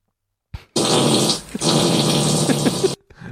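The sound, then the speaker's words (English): A loud, forceful fart-like blast rips out, lasting about two seconds with a brief break midway and a raspy, sputtering texture, alone with no talking. “Take a big ass fart.”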